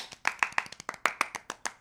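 A quick burst of hand clapping, around a dozen sharp, crisp claps in a fast, slightly uneven rhythm, from what sounds like one or two people, with no talking.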